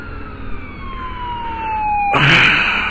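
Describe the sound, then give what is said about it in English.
A loud ambulance siren wails as the ambulance passes a car in traffic, its pitch sliding steadily lower, before a sudden burst of broad roaring traffic noise swells up near the end. “We'll update you on that in a minute, after this ambulance passes.”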